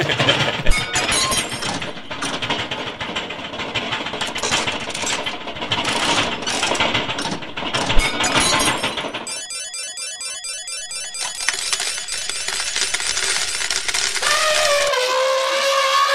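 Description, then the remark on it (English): Loud, continuous metallic clattering and jangling like coins or objects tumbling, dense for about nine seconds, then shifting to rapid rhythmic rattling and a rising whistle-like tone near the end. No talking. “Play some sound effects of clattering and pretend I'm doing it now.”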